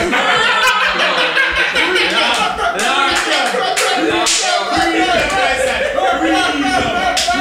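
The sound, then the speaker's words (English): A crowd claps steadily, the dense patter of many hands mixed with chuckles, laughter and overlapping voices, staying loud and busy throughout. “I don't know why y'all are clapping like y'all are not.”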